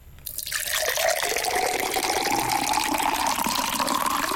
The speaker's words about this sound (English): just shout stop before Matt spills water all over the desk. That's what you've got to do. OK, good luck, and commence the pour